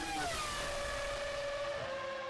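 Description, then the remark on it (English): A racing car's engine roars loudly and steadily at full throttle as it blasts through the tunnel after rounding Portier, its high whining tone holding strong over a dense rush of noise that fills the whole couple of seconds without any voices. “Round Portier before flooring it to blast through the tunnel.”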